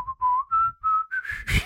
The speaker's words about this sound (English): Let's have a whistle off. No, because I'm smiling now. Okay. Try not to smile. Here we go.